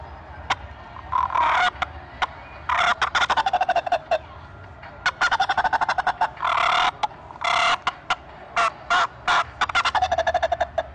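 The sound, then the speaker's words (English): A turkey call purring and cutting: soft rolling purrs broken by loud bursts of sharp, rapid-fire clucks that come in quick irregular clusters, with no talking. “So, and this one too, also, I like that little fight and purr with it and cutting.”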